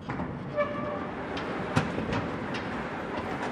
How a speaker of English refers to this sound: So we're going to walk, we'll open the main doors of the hangar. It might get a little bit windy, so when we open the doors here, then it takes us out onto the helipad into where the helicopter spends its day.